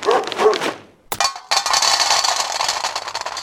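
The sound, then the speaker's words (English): A dog barks a couple of times, then a short sharp burst follows and a bright, steady noisy sound carries on to the end. “Good dog.”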